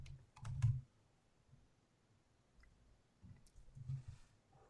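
Keyboard typing while looking up a team's remaining schedule: a quick cluster of key clicks at the start, a quiet stretch, then another burst of tapping toward the end, with no voices.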